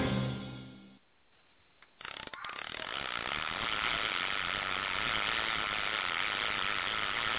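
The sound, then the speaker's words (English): After a short lull, a fishing reel's drag suddenly screams out, a loud, steady buzzing whir that runs on without letup until the end. “With the drag singing and the beer pouring, you know it's a good Monday night.”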